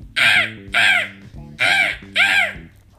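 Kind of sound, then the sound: bird, crow cawing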